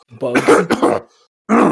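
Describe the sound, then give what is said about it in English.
A voice imitates a character coughing: a cluster of rough, throaty hacks, a brief pause, then one more strained cough, fairly loud. “And he's coughing, and his face starts growing slack, and his body starts jerking, and he begins to sway, and he starts getting a little bit grey, and he like grabs onto the table to lean onto it, but he can't stand up.”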